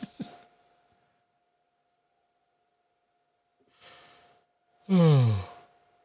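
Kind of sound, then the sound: human body sound, yawning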